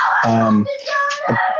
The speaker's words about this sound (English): If you just excuse me 1 minute, my children are just screaming at each other, so I'm going to have to go on mute and scream at them for a minute or two, and then I will return.